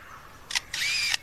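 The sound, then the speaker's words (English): A lyrebird imitates a camera shutter and motor drive: a short mechanical click-whir, a brief pause, then a longer whirring burst ending in a sharp click, clear. “And now a camera with a motor drive.”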